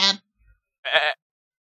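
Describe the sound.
A voice imitates a goat with two short bleats, the first cut off quickly and the second a wavering, nasal bleat of about a quarter second, loud.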